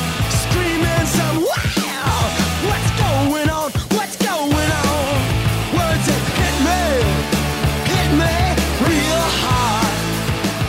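Loud, raw hardcore punk rock from a Washington, D.C. band, the lead-off track of its fourth album, released in August 1988, with a 19-year-old drummer. It blasts at full volume, with shouted vocals over thick distorted guitars and pounding drums, briefly breaking up near the start before charging on without pause.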